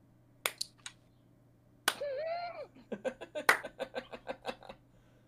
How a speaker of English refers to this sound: Tom Cruise begins slowly clapping.